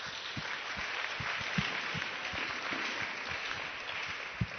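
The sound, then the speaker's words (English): An audience claps together for a child who answered a Bible question, in a steady, dense patter of many hands, with soft low thumps recurring at a regular beat underneath. No one speaks. “Clap for him.”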